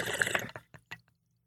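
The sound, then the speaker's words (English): Liquid sloshing gives way to three or four distinct gulps as someone drinks water, each swallow short and wet, then quiet. No one speaks. “Well, I drink a bunch of water.”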